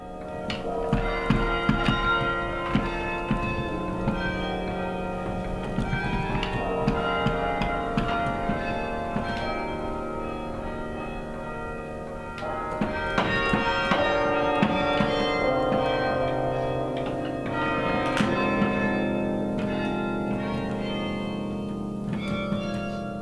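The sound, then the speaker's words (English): Carillon bells at the top of the Singing Tower play a tune. A keyboard instrument is attached to clappers that strike the bells, and carillonneur Geert de Hollander works levers and pedals to send the music throughout the gardens. Many struck bell tones overlap and ring out in a steady melodic flow of higher and lower pitches, fairly loud throughout with no voices. “A keyboard instrument at the top of the tower is attached to clappers which strike the bells, creating music.”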